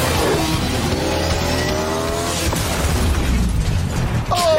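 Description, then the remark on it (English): Loud, rumbling movie-style action effects: roaring engines and a dense wall of noise, punctuated by a sharp explosive burst midway through, with no voices. “Oh, boy, those explosions are terrible.”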